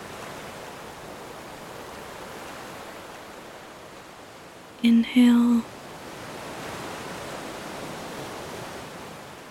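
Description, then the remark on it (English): Steady, soft wash of ocean waves on a beach rolls on continuously, swelling gently toward the end, with a calm voice speaking briefly over it midway. “As you inhale and the wave approaches, then you exhale and the water's pulled back.”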